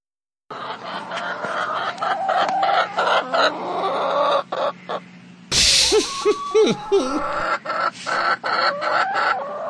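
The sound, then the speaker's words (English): A flock of chickens clucking and squawking, with dense overlapping calls, a sharp burst of louder cackling midway, then steady chatter continuing without any talking. “Are you sure they're chickens?”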